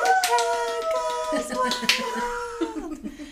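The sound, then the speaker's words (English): A small live studio audience, including a record producer, claps and snaps in quick, uneven bursts while voices let out sustained whooping cheers, mimicking a wild audience's applause for about three seconds. “And the audience goes wild.”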